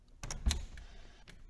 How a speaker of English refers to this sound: Now, I'll just unlock the door and let them in.